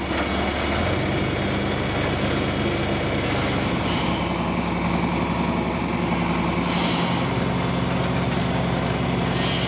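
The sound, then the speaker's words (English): A vintage tractor engine runs steadily and loudly, its low rumbling chug continuous throughout, with a brief dip in tone partway as the load shifts while cultivating the ground. “All right, speed up the engine a little bit.”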